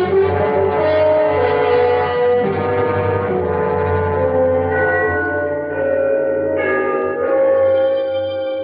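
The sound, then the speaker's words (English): The church bells of Trinity, at the lower end of the city, chime loudly and steadily to mark the three-quarter hour at a quarter to midnight. Their rich, overlapping tones ring on and blend together, with a few fresh strikes near the end. No voices are heard. “The bells of Trinity had just run the 3/4 hour.”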